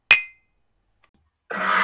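glasses clinking

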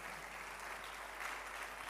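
audience clapping

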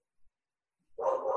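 dog barking

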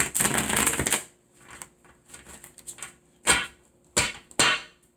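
shuffling tarot cards

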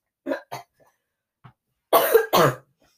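coughing

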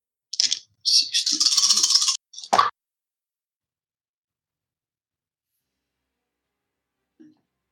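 dice rolling

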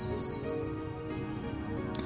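birds chirping

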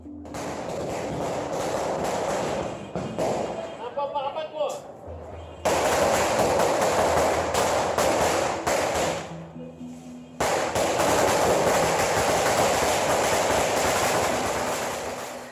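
fireworks and firecrackers exploding

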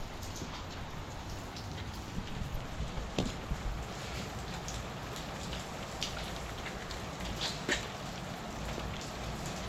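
rain falling

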